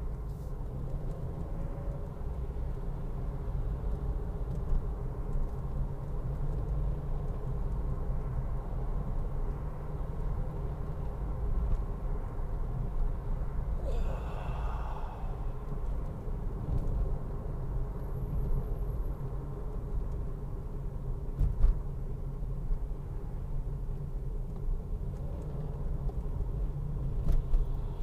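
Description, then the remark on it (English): Steady low road rumble from inside a moving car driving behind a truck, a continuous engine and tire drone with a brief brighter whoosh midway, as of a passing vehicle, and no talking. “Please let there be another lane so I can go around this motherfucking truck.”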